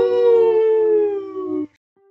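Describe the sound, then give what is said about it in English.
A person lets out a single sustained howl imitating a wolf, loud, its pitch sliding slowly downward for about a second and a half before cutting off abruptly. “Hey, what do wolves do? We forgive, we forget, and we howl.”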